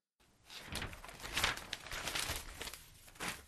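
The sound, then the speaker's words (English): Crisp rustling and crinkling of newspaper pages being folded shut, a few seconds of continuous papery crackle with brief louder swishes and no voices. “And we close the paper on that little bit of drunken debauchery, coming to the end of today's bulletin.”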